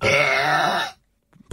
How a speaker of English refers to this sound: So here's the burp. Have a listen to this, because I don't think this is the loudest burp I've ever heard. Have a listen.